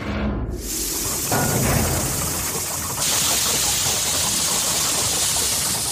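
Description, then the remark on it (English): A mechanical calculating machine, fed paper at one end and run by Ada Lovelace's computer program to work out Bernoulli's numbers, whirs into motion, a dense, steady rumble and hiss that swells partway through into a brighter, louder churning, with no voices present. “That is a complex set of mathematical equations that will get the machine working and free Nova.”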